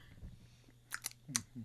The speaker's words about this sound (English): But the thing is that when it comes to like media, like movies or like I can hear you crunching in my headphones. All of a sudden, it's an ASMR.